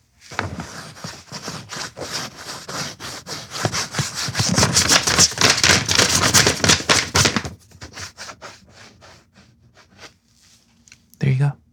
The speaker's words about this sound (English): The next one, as a trigger warning, this is definitely a nail scratching against a sheet of paper. I'll try to start off a little more calmly for you guys, and then we'll probably make it a little bit more violent.